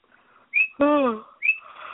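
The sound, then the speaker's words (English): Pet birds, called Pony Birds, chirp and call at night: two thin, high whistled chirps around a louder, squawky call that slides downward, all in quick succession with no talking. “Yes, Pony Birds, I hear you. You're very chatty tonight.”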